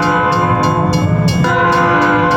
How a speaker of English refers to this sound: Thanks for listening to the Savage Nation podcast, and here comes the train.